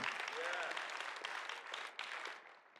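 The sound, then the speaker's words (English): A church audience claps hands during a morning sermon in a dense, steady wash of applause, loud at first and tapering off toward the end, with a few voices calling out over it. “Someone clap your hands this morning.”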